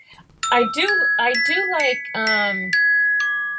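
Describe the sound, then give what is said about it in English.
A mobile phone rings with a chiming tone: a steady high note holds while bright chime notes strike near the end, overlapping a voice that is talking at the start. “Sorry, all this chiming here. Cheepers creepers. It's my phone that just rang.”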